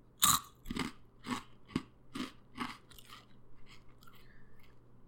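Crisp crunching of a mozzarella and marinara flavored potato chip: a loud first bite followed by about six rhythmic chewing crunches that gradually soften, with no talking.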